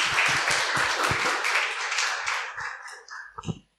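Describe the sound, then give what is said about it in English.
A crowd claps steadily for a few seconds to welcome a speaker about to share the word, a dense wash of many hands, thinning out to a few scattered final claps before falling silent. “Okay, yay Rishi, let's clap for Rishi.”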